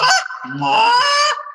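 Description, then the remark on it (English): A loud duck call blown as a goose call for a mic check, in two or three honking bursts, the harsh nasal tones rising and breaking over about a second and a half, with no talking. “Yeah, mic check to the duck call. Turn it into Goose call.”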